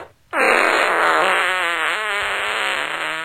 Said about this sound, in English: So again, cue those fart bars.